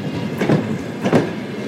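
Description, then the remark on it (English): A train rumbles along the rails, pulling into a station in Sloviansk, Ukraine, with two heavy rhythmic clacks of wheels over track joints over a steady low rumble. No one speaks. “At the station, the next train of love arrives.”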